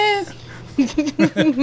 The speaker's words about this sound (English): If anybody's wondering what that whining is, that's the puppy. Because she's not getting love.